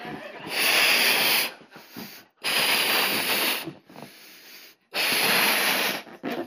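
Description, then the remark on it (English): Someone blows up a balloon with three long, forceful breaths, each a breathy rush of air separated by short pauses and quick inhales, fairly loud with no talking. “Forgot to blow a balloon.”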